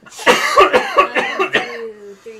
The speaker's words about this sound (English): I went to go drink, oh. And I coughed at the same time.